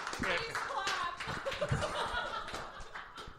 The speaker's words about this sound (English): Yeah, clap. Yeah, why not?